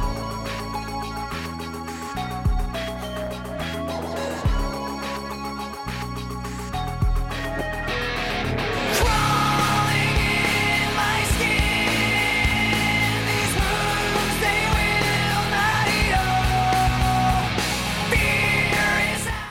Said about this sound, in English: It was just like a huge, heavy song. Listen to like the first scream and you know what I talk about.